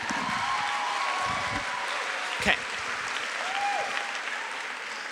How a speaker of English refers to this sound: And Seattle, one of my favorite, yes, vote. Clap for voting.